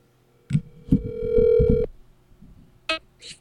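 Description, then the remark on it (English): A single ringback tone from an outgoing phone call to the caller's wife, one steady electronic burst lasting about a second, framed by handset clicks and brief bright chirps near the end. “Maybe if I try to call my own wife.”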